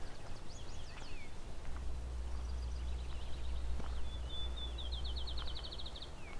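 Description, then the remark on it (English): A field sparrow sings softly, its clear whistled notes speeding up into a quick trill, with a few other faint bird chirps earlier over a low background rumble. “As in, it's not loud for a field sparrow, this one.”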